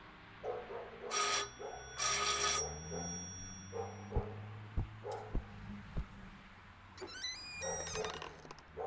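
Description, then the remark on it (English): A doorbell rung at night by police officers sounds in two loud, buzzing bursts, followed by a series of heavy, evenly spaced thuds and then a brief high-pitched squeaky creak. “From the way he looked, he'd been in bed when we rang the bell.”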